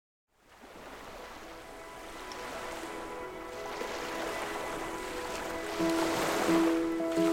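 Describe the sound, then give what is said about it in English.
A steady, continuous rush of flowing water fades in and swells slightly, fairly loud, with faint tonal hums threaded through the wash and no one talking. “There's no more soothing sound than the steady stream of water.”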